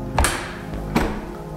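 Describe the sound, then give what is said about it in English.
A stall door is yanked hard twice as if being pulled off its hinges, each pull landing as a heavy thud with a brief rattle, with a low steady rumble underneath and no voices. “I held my breath, and the thing outside started pulling the door off of its hinges.”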